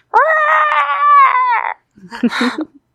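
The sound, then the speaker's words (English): A loud, drawn-out ghostly shriek from the animated cartoon Lonesome Ghost, heard as the characters go inside a haunted house, holds one high wavering pitch for about a second and a half, then cuts off; a brief burst of breathy vocal sounds follows after a short pause. “And we just go inside a haunted house and we suddenly hear a shriek.”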